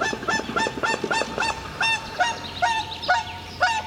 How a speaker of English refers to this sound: we're listening to one of them with the calls of the spotted crake, the common reed warbler, and the whooper swan. That's the one that's whooping.